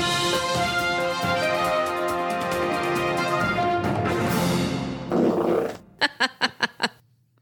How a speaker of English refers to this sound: No, that was your fart from last week. It's so bassy, man. And just, I didn't even really have to fucking bring up the volume on that, you know?